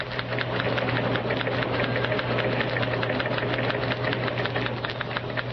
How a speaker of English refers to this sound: Let us turn on a microphone in the newsroom and hear the clatter of typewriters as news programs are rewritten. Again, you will hear in the background Press Association teletypes.